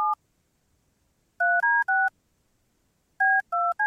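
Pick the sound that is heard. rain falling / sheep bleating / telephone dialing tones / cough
telephone dialing tones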